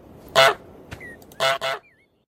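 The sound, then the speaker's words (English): A goose honks loudly three times, one single blast followed after a pause by a quick double honk, with faint whistle-like tones between, in a clean game-style sound effect. “Is this the stupid goose game?”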